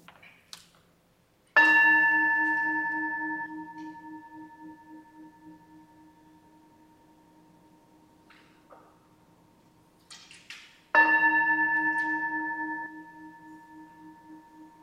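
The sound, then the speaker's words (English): A bell in a sanctuary is struck twice to call people into worship, about nine seconds apart, each strike ringing out clearly and then slowly fading with a long, sustained shimmering tone. Faint rustles sit in the quiet between strikes. “Ground yourself, settle in, as we listen to the ringing of the bell, calling us into worship.”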